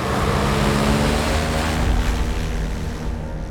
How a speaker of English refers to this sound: She heard the airboat speed off as she ducked into the tree line, hidden from sight once again.